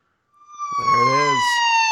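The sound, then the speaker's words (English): A police siren fades in and holds a loud, steady, piercing tone for about two seconds, with a brief voice-like sound rising and falling beneath it. “There it is. The Simmons siren.”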